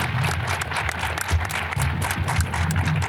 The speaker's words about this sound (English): Let's give another round of applause for our panelists.